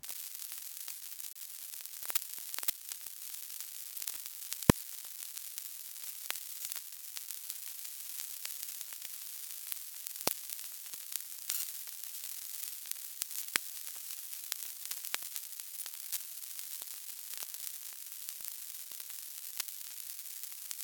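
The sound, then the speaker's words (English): Web server traffic from one week in May turned into sound, each day's traffic sped up to one second of audio: a steady, bright hiss of static peppered with irregular crackles and a few sharper clicks that pop out, continuing unchanged throughout with no voices. “Here is what all of 1 week's traffic from May sounds like, with each day's traffic sped up to become 1 second of audio.”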